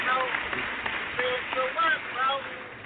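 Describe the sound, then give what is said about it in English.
A canned round-of-applause sound effect, played to reward a caller's testimony: steady, dense clapping from a crowd with whoops and cheering voices rising over it, lasting a few seconds at a fairly even loudness. “I got me some new sound effects and shit, y'all. So you come drop a testimony, I give you a round of applause, man.”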